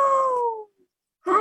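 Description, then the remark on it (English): A frightened cat lets out a loud, drawn-out yowl that slides downward and fades, then after a short silence a second harsh, rising, strained yowl begins. “All at once, a hullabaloo, and through the manhole, the poor cat flew. It soared alarmed across the room and hightailed it off into the gloom.”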